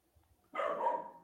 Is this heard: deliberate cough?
no